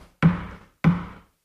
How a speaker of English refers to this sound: The master of ceremony then knocks again loudly 3 times.